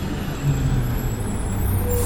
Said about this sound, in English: Ooh, here's a garbage truck.